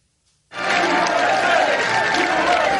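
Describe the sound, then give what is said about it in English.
A large crowd in Lithuania roars and cheers loudly for President Biden, a dense sustained wall of voices that bursts in after a brief silence and holds steady at full volume. “President Biden told a roaring crowd in Lithuania that NATO's commitment to Ukraine will not weaken.”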